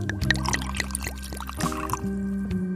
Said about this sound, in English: Well, for this drink, I think we should get something stronger. Let's go with whiskey. Okay, perfect. Let me make you a drink.